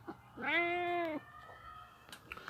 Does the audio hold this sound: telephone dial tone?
no